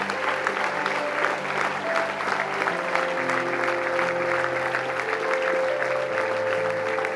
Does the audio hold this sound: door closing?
no